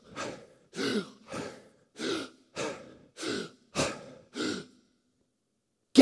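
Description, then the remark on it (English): A person imitates a fish gasping for air: eight short, breathy gasps in a steady rhythm, fairly loud, followed by a brief silence. “but the actions that separate us from God, that when we live in opposition or ignorance of God, we like fish.”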